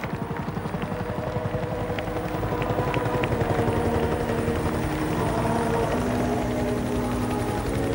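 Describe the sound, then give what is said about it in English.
An army helicopter thunders, its rotor blades chopping in a steady rapid pulse over a heavy engine drone that swells slightly as it comes down and lands beside a house. No voices are heard. “Helicopters coming down, and they landed just right beside the house.”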